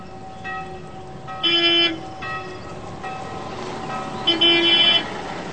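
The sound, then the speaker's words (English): A big touring coach rumbles steadily as it pulls in, its horn sounding two loud, sustained blasts a few seconds apart, with no one talking. “they're making some sound recordings just as a big touring coach arrives.”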